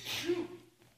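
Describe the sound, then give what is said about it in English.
A single quick sneeze: a sharp, hissy burst that trails into a brief voiced tail, fairly soft, with no talking around it. “Bless you.”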